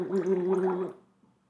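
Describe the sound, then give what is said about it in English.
A person gargles water for about a second, a steady, bubbling, throaty rumble with a low voiced hum that trails off into quiet. “That's what's up with me. Gargling water.”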